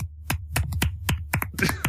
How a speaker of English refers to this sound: Is that a golf clap or somebody fapping? I have it as weak applause, which is what I do when I'm done fapping.